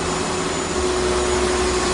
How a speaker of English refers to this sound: Yeah. Carolina Hurricanes and the San Jose Sharks. Yes. Get the vacuum cleaner out.